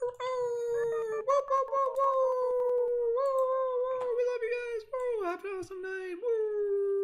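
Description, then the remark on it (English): Several human voices imitate wolf howls together as a farewell at the end of an evening gathering, a long sustained wavering chorus with overlapping pitches that rises and dips, fairly loud and continuous throughout with a few brief yelps breaking in. “Let's finish it off with some nice wolf howls together, or any other whooping noises that you guys want to make”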